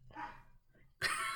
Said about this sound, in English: She's not going to be quiet. I think she's barking at something going on. That's why.